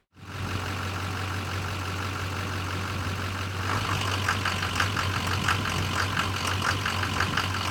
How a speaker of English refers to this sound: You'll know that because the truck will throw P0088 and will run extremely rough and sounds like it wants to come apart.